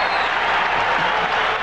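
A baseball stadium crowd at Old Memorial Stadium in Baltimore cheers and applauds Bo Jackson's running catch in center field, shown on the big screen, in a loud, steady, unbroken roar of hissing claps and shouts that holds at full strength, with no single voice standing out.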